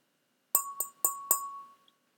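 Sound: tapping a wine glass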